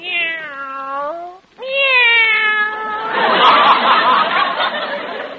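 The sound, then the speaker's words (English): Cats kept in a cage meow loudly: two long, drawn-out wavering meows in succession, then a harsher, noisy yowling that continues to the end. No one speaks. “Well, I had to keep them over here in a separate cage, away from the white mice.”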